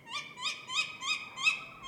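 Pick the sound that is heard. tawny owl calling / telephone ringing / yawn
tawny owl calling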